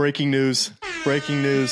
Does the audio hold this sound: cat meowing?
no